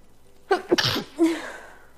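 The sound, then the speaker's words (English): A single sneeze: a quick sharp inhale building into an explosive burst, followed by a brief voiced exhale trailing off, with a quiet background around it. “Hold on, I gotta sneeze.”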